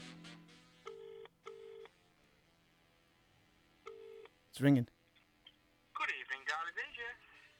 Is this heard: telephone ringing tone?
yes